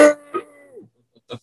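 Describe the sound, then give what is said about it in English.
A cow moos once, a short, sharp-edged call that holds a low, buzzy tone before sliding downward and fading, followed by a few brief, soft knocks. “Was that a moo?”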